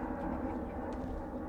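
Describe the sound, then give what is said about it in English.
A steady, low roar of an airplane flying overhead fills the moment, a continuous rumbling drone with no breaks, moderately loud. “Still with the airplanes flying over.”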